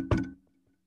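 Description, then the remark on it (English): A solid knock on a door, heard as one heavy thud with a short ringing decay, followed by near silence. No voices are present. “You got someone knocking on your door.”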